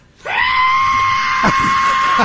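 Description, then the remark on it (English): A person imitates a shrill screech-like whistle with their voice, one loud sustained high-pitched tone held steadily for about two seconds, alone. “I'm taking a shave, and I heard a screeching. Between a screech and a whistle.”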